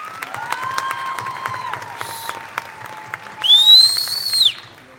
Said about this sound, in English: $621,847 in scholarship funds. Please give them a big round of applause for that.